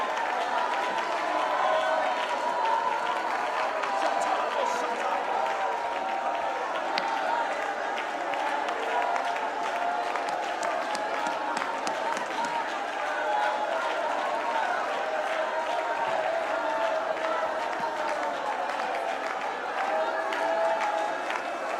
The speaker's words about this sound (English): You know what hell's thinking right now? They're shouting and there's not even music going on. That's something real in the atmosphere.